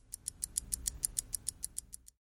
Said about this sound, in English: Let me roll some dice.